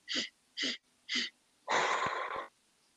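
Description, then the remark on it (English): A breathing exercise: three sharp, evenly spaced sniffs in, done as loud as possible, followed by one long, forceful, breathy exhale lasting almost a second. The breathing is loud and there is no talking. “So let's try to sniff as loud as we can and exhale.”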